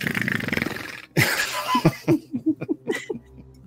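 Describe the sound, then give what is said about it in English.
Voices imitate two characters beginning to snore at about the same time: a low, fluttering rasp, then a harsh noisy snort, then a quick series of short, rhythmic snorting grunts. “Paula and Glaz both about the same time begin snoring.”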